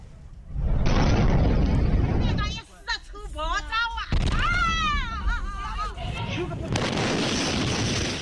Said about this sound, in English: 10 people are dead and more than 100 are injured after a tanker carrying liquid gas exploded in China.